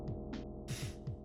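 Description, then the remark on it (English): Short bursts of harsh digital static from a rendering glitch at the end of a song dumped to MP3 crackle over a steady low, throbbing electronic hum, with one longer hiss of noise in the middle. Fairly quiet, with no voices. “It is literally just a split second of static at the end of almost every song. It's a rendering glitch.”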